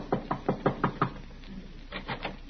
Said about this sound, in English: As we rejoin Riley now, he is tapping a bit nervously at the door of Miss Jessup's apartment.